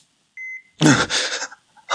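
A steady electronic beep from medical equipment rings out for a moment, clear, then gives way to loud, rough breathy bursts that swamp the quiet.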